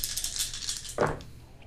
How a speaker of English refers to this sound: There's something really enjoyable about just rolling a shit ton of dice. I know, I just enjoyed it myself.